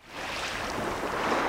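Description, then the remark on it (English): Waves gently lap a beach in Maine on a cold but bright January day, a steady, hissing wash of water with a breezy rush underneath and no distinct individual breaks; no one speaks. “The waves gently lap the beach on this cold but bright January day.”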